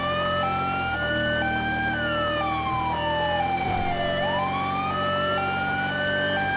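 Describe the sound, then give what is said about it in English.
A police Charger car races off with its siren wailing in rising and falling sweeps over a steady, loud engine roar, with no voices. “This charger should be fast. Let's roll. Oh yeah, this thing is crazy fast.”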